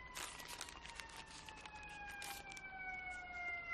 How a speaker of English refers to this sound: There's a lot of sirens out here tonight.